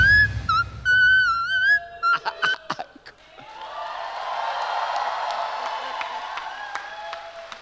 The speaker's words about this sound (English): I'm so here for this whistle tone.